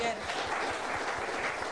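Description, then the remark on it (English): An audience claps together for the women, at the preacher's call during a sermon, in a dense, steady burst of applause, the crackling patter holding an even loudness for a couple of seconds without a break. “Before I continue, clap for the women. Clap for them.”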